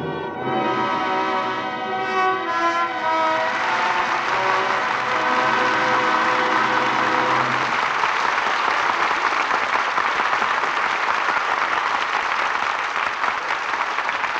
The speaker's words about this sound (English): Well-deserved applause for an exciting performance by our two stars, Alan Ladd and Veronica Lake. And here they are, back at the footlights for a curtain call.